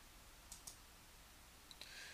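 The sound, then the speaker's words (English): A few soft, sharp clicks of computer keys tapping in two quick pairs, spaced apart, as a person types while multitasking, over a quiet background hiss with no one talking. “As you hear the keys clacking, me multitasking.”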